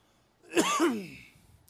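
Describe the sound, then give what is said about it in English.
A single muffled cough from a speaker who has turned their head away from the microphone breaks a short silence with one rough, voiced burst that trails off quickly. “I'm going to cough here in the middle of the episodes.”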